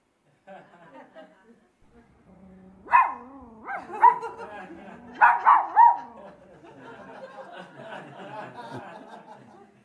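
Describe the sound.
A dog named Gopal barks loudly in a rapid cluster of sharp, agitated barks at a statue of the Buddha at an ashram, with a low murmur of voices and background noise underneath.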